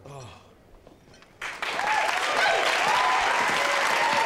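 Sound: applause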